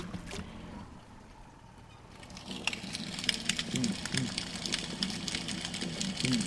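snapping shrimp crackling underwater

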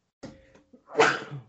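sneeze

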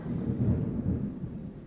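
thunder

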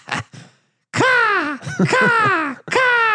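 eagle screech sound effect

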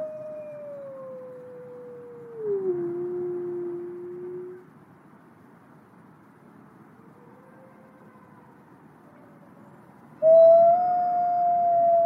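gray wolf howling

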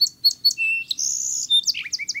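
song sparrow singing

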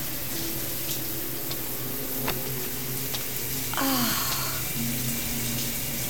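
shower running water

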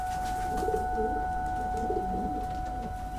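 pigeons cooing

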